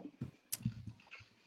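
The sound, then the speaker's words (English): A few short coughs and throaty bursts in quick succession, with sharp breathy hits midway and at the very end, and no talking. “Sorry, I'm coughing now.”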